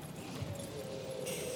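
Horses pulling a carriage break into a sprint, their hooves clip-clopping at a quick, galloping pace, a steady rush of hoofbeats blended with a noisy, rumbling background, with no voices.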